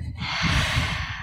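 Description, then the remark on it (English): A single deep, conscious breath drawn in as a steady, airy rush lasting about a second, with no talking over it. “and come back and be like, take those breaths. I'm very obviously much an advocate of breathing, but like conscious breath.”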